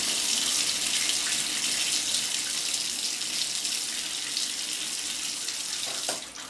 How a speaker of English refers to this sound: we can't just stay in the shower the entire night.